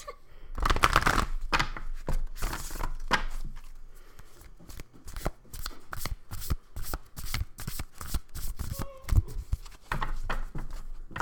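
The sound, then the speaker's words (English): Shuffling of an oracle card deck: a rapid flurry of crisp riffles and slaps at the start, then a steady run of quick, sharp clicks and flutters as the deck is shuffled repeatedly. “Okay, so let's shuffle off all some cards.”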